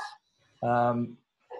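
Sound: dog barking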